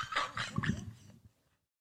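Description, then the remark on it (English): A dog whimpers at a door it is leaning on, a brief, wavering whine of a few rising and falling notes that fades out after about a second, leaving quiet. “The dog.”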